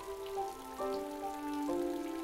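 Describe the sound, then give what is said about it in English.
Steady rain hisses in the background while sustained, stepping musical tones play over it; no one speaks. “Thought she might get cold feet from the rain.”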